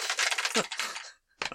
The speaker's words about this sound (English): Oh, you rolled on the down the dice tower. Yep. Did it make a horrible noise?